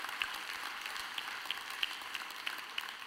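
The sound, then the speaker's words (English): A soft golf clap from a church audience, a light patter of polite clapping with a few sharper individual claps standing out, fairly quiet and steady with no voices. “I call that a golf clap.”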